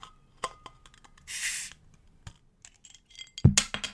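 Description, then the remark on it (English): A glass beer bottle clinks, then a short burst of fizzing hiss escapes as the cap comes off, followed by a few more small knocks and a louder glassy clunk near the end. Fairly quiet. “Okay, I'm just going to open a bottle of beer.”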